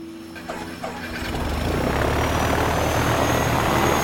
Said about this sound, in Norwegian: Klokka 20.07 tar Widerøes rute 7.10 omsider av fra Namsos lufthavn og set kursen nordover. Mer enn 2 timer etter ruteplanen flyet på vengene att.